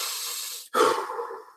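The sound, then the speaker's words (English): A person on a ferry ride breathes heavily and deliberately, trying to keep from throwing up: a long, hissing exhale, a brief pause, then a deep, rough inhale, loud and airy with no talking. “And I'm doing everything I can just to keep it together, breathing like...”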